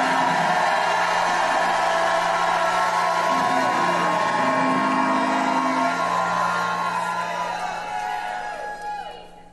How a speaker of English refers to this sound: Now, if you believe it, lift your hands and shout the victory like you've never shouted the victory before.